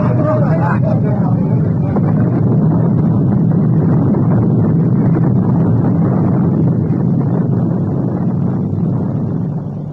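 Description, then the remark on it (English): The torpedoed ship Morning Star sinking beneath the waves, her boilers bursting: a loud, dense, churning roar of rumbling water and groaning machinery, steady for the whole stretch before easing slightly at the end. “The once proud Morning Star slid beneath the waves, her boilers bursting in her last dying gasp of defiance.”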